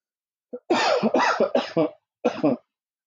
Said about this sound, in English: Sorry, I was trying to reduce the noise there when I was coughing.